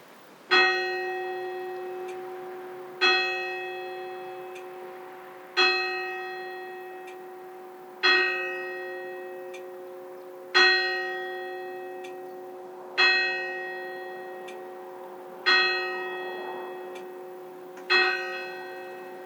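A church clock bell in a village churchyard strikes eight times at a slow, steady pace, each resonant clang ringing out and fading before the next, clear with no voices. The church clock has recently been fixed.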